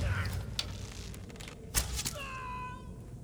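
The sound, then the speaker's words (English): A door creaks open with a drawn-out, whining squeal, preceded by a couple of sharp knocks or thuds. It's moderately loud over a low background rumble. “Let me open this door.”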